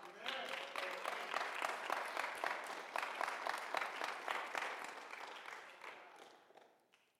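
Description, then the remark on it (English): An audience bursts into sustained applause, many hands clapping in a dense, crackling wash that holds steady for several seconds before thinning out and fading toward the end. “And so I think today you ought to give yourself a good hand clap, because we are fulfilling the vision of this house.”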